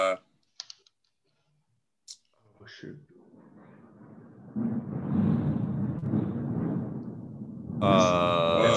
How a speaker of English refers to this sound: Storm. Can you hear that? Yeah. Is that thunder? Yeah, it's nasty. It was like hailing earlier.